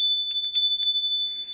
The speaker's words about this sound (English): Very nice. I think we can all agree that an angel just got its wings. "Look, Daddy, teacher says every time a bell rings, an angel gets his wings." That's right.